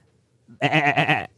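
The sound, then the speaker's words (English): A person imitates a sheep in a game of reenacting animal sounds, giving a single loud, wavering bleat lasting about half a second, vibrato-like pulses running through it, with quiet around it. “you need to reenact what that animal sounds like”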